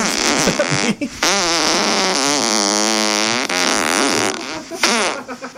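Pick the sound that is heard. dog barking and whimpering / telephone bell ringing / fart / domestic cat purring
fart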